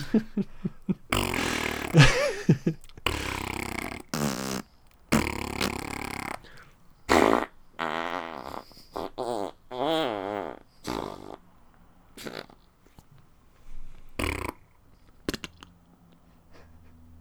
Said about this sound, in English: Then now follows 20 seconds of farting noises.